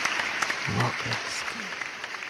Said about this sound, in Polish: Oklaski. Uśmiechy.